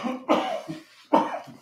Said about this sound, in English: It's gonna be fucking coughing. Dabs.